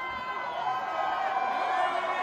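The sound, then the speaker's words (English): A large concert crowd in Kansas City roars and cheers in a steady, dense wash of voices, loud and sustained for the whole moment without any single voice standing out. “Crowd.”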